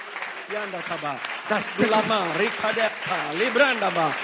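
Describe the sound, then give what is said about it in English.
A crowd claps their hands steadily for a few seconds, the scattered claps mixed with excited voices and calls throughout. “Today, can you clap your hands and pray that everything will be in the skies?”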